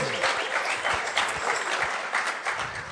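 An audience applauds steadily, a dense wash of many hands clapping at an even loudness for the whole stretch, with no voices rising above it.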